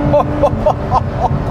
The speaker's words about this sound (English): By the way, listen. Camry V6, like that. That was only second, now it's third.